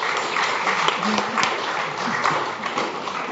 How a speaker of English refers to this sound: So please do give our lovely volunteers a bit of a clap. They did a wonderful job.